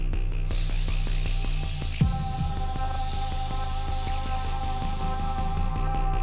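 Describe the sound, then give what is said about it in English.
A person makes a long, steady hissing sound imitating a snake, held for several seconds with a slight dip midway, loud over a faint background hum. “I'm a snake, I go.”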